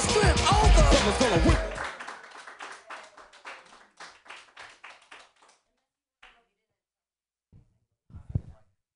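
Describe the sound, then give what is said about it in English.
A comedy show audience bursts into loud, dense applause for the last comic, which quickly thins into a handful of scattered, individual claps, dying away within about five seconds into near silence. “Clap for me.”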